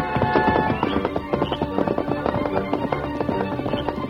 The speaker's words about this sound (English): The great horse sensed the urgency in his master's voice, and his silver shod hoofs flew over the trail, up and on into the hills, where a faint rim of light could be seen in the eastern sky, then across the canyon bridge, and down towards Santa Rosa